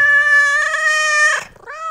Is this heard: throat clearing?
no